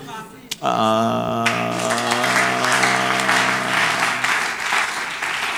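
An audience claps steadily for several seconds, a dense, continuous patter that swells in after a sustained keyboard chord and continues over the fading music.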